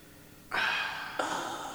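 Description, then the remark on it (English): Two loud, deliberate breaths, a long airy exhale followed quickly by a second forceful breath, with no talking. “I recommend breathing.”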